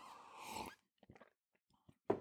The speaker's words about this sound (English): Let's all have a sip of coffee here.